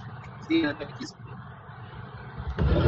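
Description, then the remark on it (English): Steady low rumble of a car cabin on the move, driving back from Dallas Cup games, road noise droning throughout, with a brief snatch of voice early on and the rumble swelling louder at the end. “Naturally, in my car right now, heading back from Dallas Cup games.”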